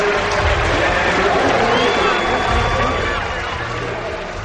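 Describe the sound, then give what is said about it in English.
A large stadium crowd at the U.S. Olympic trials roars and cheers as Dan O'Brien heads home, in a dense, steady wash of noise, with a few high whistles cutting through; no single voice stands out. “Let's let the crowd carry him home here.”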